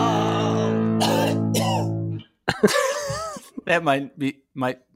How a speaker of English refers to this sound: And that cough there at the end was great too,